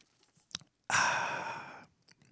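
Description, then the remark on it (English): A single long, close-up slurp of coffee, a wet, airy sucking noise lasting about a second, loud and right on the microphone, with a faint click just before and no talking. “That's a bonus slurping of the coffee for the Let This Mind Be In You people that tuned in.”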